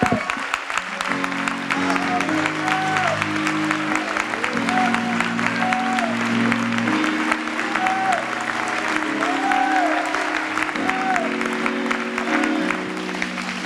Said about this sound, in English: Let's give the Lord Jesus a great big hand.